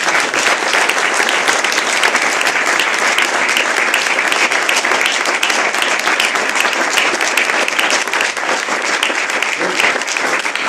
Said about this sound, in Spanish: Así que por favor, fuerte aplauso para nuestro invitado.